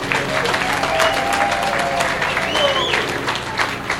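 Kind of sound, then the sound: crowd, audience clapping hands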